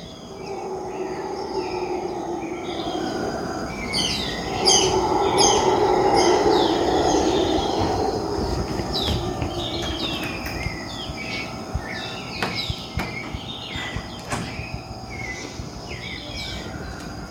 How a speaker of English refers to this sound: It's 5 a.m. and I'm about to take my bus to San Jose this morning. But I can hear howler monkeys.